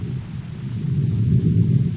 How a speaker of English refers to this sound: What's the noise? You blasted the top off the crater. The volcano. It's erupting.